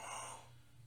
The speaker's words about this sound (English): You good? That's yawning.